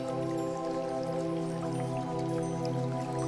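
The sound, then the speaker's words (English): Water flows steadily in a creek in the bush on a sunny day, a continuous even wash with faint dripping and trickling detail, holding the same moderate level throughout with no voices. “All you hear is the sound of water continuously flowing and a few birds tweet somewhere in the bush.”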